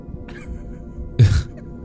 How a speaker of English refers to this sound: excuse me while I clear my throat.